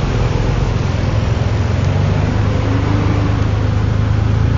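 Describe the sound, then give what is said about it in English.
A powerful brand-new motorbike engine runs with a steady, loud low rumble and a broad mechanical roar, holding an even pitch with only slight variation throughout and no speech. “This is a seriously impressive looking motorbike.”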